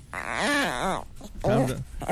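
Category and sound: animal, dog growling and whimpering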